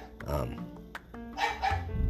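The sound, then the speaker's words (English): A dog barks in a few sharp, loud bursts, with a brief pause between the early barks and a quick pair near the end. “Really? Come on, dog.”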